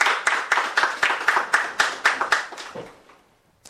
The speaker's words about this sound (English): I'd like you, with a rousing round of applause, to help us welcome our main speaker, Dr. Theo Champong. Please, let's put our hands together for him.